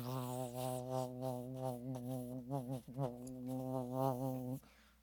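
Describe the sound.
A person imitates a hive of buzzing bees with their voice, a steady droning hum that wavers in pitch for several seconds before cutting off abruptly.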